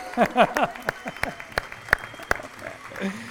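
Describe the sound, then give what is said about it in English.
An audience at Doral Vineyard breaks into applause and whooping cheers, celebrating back to school and Doral Vineyard turning 14 years old, rising voices over scattered sharp claps that thin out toward the end, at a moderate volume. “Can we like get a little loud?”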